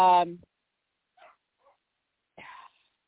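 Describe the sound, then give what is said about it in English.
A dog barking at a cat lets out a single loud bark right at the start, then a few faint, scattered yips and a second, shorter bark near the end, with quiet pauses between them. “He's not going to stop barking at the kitty.”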